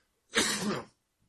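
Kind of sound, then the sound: human body sound, throat clearing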